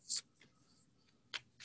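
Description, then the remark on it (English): Playing cards being shuffled: a few soft, crisp rustling bursts, one at the start and a couple more near the end, with quiet gaps between and no voices. “A little shuffling.”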